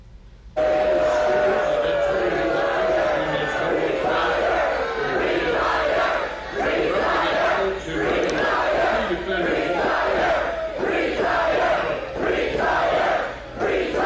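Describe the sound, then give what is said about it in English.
A loud crowd of supporters shouts and jeers continuously, with a politician's steady voice speaking through a microphone faintly underneath, carrying on in a flat monotone beneath the noise. “And you can hear him droning on underneath as if nothing is going, nothing in the crowd is phasing him.”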